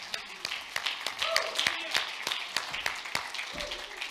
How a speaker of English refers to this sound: Stand to your feet and clap your hands to the Lord, for he's worthy.